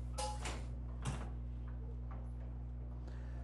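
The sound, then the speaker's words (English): A door is opened for a latecomer, with a few short clunks and rattles of the latch and frame over a steady low hum; no one speaks. “Can I get that door for somebody trying to peek their way through?”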